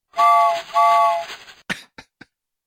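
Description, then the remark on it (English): A choo-choo sound effect: a steam train whistle sounds two loud, steady chord-like blasts, followed by three short puffing chuffs that trail off into silence. No one speaks. “Well, here, if you want some inside baseball on the podcast, to ensure that I got what I wanted, what I searched for was choo-choo sound effect.”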